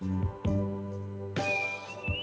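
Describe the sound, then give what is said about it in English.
A whistled melody of a song's chorus rises over sustained, droning musical tones, growing brighter partway through; no one speaks. “why are you whistling?”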